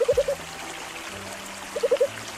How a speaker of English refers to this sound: Can you hear the difference between this frog and this frog?